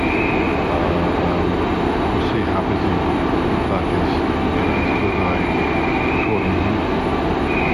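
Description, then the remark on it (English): Busy railway station ambience at London Waterloo station: a steady, loud rumble of trains and crowd noise, with a faint high squeal drifting in and out while a person talks briefly. “I'm at London London Waterloo. I've done my first train change.”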